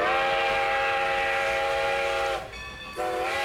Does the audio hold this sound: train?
yes